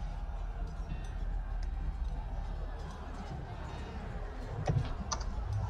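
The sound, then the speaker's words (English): A few sparse clicks of typing the letter R on a computer keyboard, set against a steady noisy background with a low rumble and faint indistinct voices. “I'm typing an R in it.”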